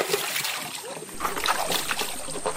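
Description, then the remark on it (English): Continuous sloshing and splashing water mixed with gritty scrubbing as a young woman washes her 20-liter plastic jerrycan with sand from a stream in Bumaka, locally called Mr. Peter Water, before fetching water; the rubbing and swishing steady throughout. “a young woman, uses sand from the water to wash her 20-liter gallon jerrycan before fetching water.”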